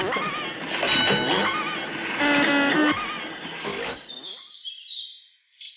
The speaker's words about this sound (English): can you please put some sound effects of mechanical whirring followed by birdsong, please?